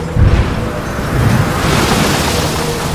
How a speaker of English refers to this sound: Fuck. I don't think this shitty little wood boat is going to handle these 200-foot waves. God help me.